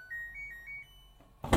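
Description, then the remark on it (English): An LG combination washer-dryer in a bathroom, beside the toilet, plays a short electronic chime, a quick run of several soft high beeps stepping up in pitch, followed after a pause by a brief burst of rustling noise. “It's an LG, and it does cool noises as well.”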